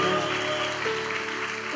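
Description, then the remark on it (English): An audience at an English-Spanish worship service applauds for Jesus Christ in a steady, dense wash of clapping, with sustained tonal hums running underneath for the whole short stretch. “Let's applaud to Jesus Christ.”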